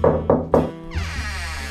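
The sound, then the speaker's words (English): A client gives three quick, firm knocks on a detective's office door in an even rhythm, followed by a sustained, wavering droning tone that carries on to the end. “Which was just as well because if Girl Friday had been there, she would have scared off the client who knocked on the door.”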